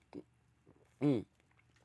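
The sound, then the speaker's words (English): A voice imitates a wet slurping mouth noise, starting with a brief smack and then one louder, drawn-out slurp, with no other sounds around it. “Did you hear the slurps?”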